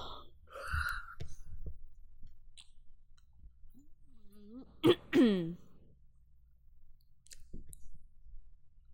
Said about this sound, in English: What was that? I'm, like, burping up air.